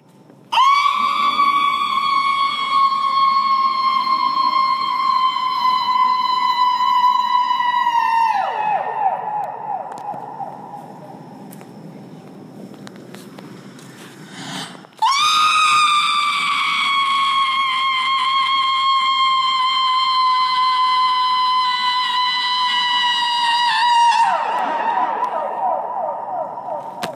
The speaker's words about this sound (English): Voice Piece for Soprano, which is a performance instructional piece that Yoko wrote. And the instructions for the piece are scream, 1, against the wind, 2, against the wall, 3, against the sky. And here's what that sounded like at the Hirshhorn.